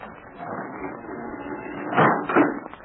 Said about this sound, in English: And so with the help of Jigger, one of Smiley's men, Pat and Terry were forced into the kitchen part of the tavern. There, a trap door in the floor was raised.